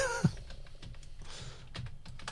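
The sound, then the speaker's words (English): Rapid, irregular clicking of keys on a computer keyboard as someone types to look up a song's chart position, moderately quiet, with a brief tone at the start and no voices. “I'm literally typing it.”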